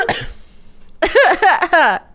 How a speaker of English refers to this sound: Of course, you'd never be able to sneak up on me because you just cough the whole time.